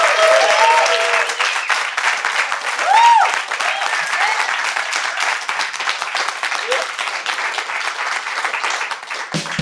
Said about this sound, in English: Well, let's give a huge round of applause for our guest of panelists. Thank them one more time. This is awesome.